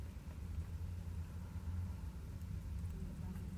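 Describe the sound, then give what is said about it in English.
A steady, low rumble of ambience inside a car being used for recording fills the whole stretch, a constant deep hum with a faint hiss above it and no distinct events or talking. “Sorry, there's somebody walking by. I'm recording in my car.”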